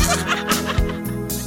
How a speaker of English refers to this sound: Now the officers from Enid are in full wind sprint, running to the danger to rescue this person who's obviously in dire straits. They turn the corner of the barn, and what do they find standing before them? You fucking goat! Son of a bitch!